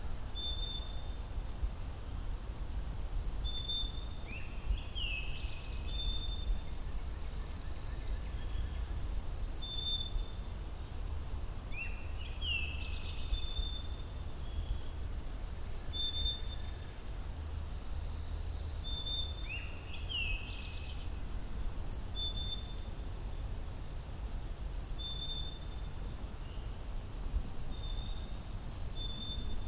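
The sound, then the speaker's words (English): A black-capped chickadee calls over and over, bursts of high chattering notes returning every several seconds, fairly clear above a constant low rumble of outdoor background noise. “Very talkative black-capped chickadee.”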